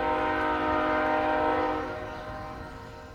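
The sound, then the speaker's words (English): A train's whistle blows in one long, steady blast over a rumbling, chugging engine. It starts loud, then eases off and fades somewhat toward the end. “Nicki played with his new toy train, chanting, choo-choo-choo.”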